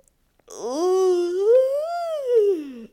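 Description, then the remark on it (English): A single long, drawn-out vocal yawn with a stretch, fairly loud, its pitch gliding up and then sagging back down over a couple of seconds before trailing off, with no other sounds around it. “But let's start right now with a good yawn stretch.”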